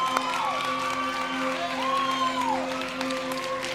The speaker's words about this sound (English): And so I'm going to invite everyone who's getting baptized to come stand over here on the side of the stage. And students, yeah, you can clap for them. Great.